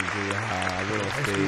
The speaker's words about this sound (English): He graduated, man. Round of applause. He graduated from junior high.